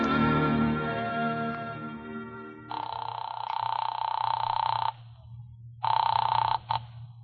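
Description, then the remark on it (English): An old-fashioned telephone bell rings twice in long, rattling bursts with a short pause between, loud, following a fading sustained musical chord. No one speaks. “Oh, I'm glad you answered the phone.”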